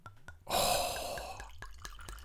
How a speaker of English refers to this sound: That was a strong glug there. At the end.